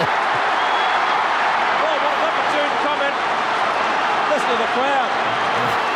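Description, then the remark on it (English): A large stadium crowd cheers in a dense, unbroken roar for six seconds after a goal is scored, loud and steady, with scattered individual shouts and whoops rising and falling above the mass of noise. “Listen to the crowd.”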